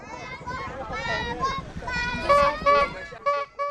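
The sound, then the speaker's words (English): Several Atayal children in an Aboriginal mountain village in Hsinchu County, Taiwan, yell "Babu, Babu" together in loud, bright voices, imitating the honking horn of an ice cream seller's motorcycle with repeated two-note calls that grow shorter and punchier toward the end. “The kids that you can hear are from the Atayal tribe. They're yelling "Babu, Babu," which is the sound of the horn”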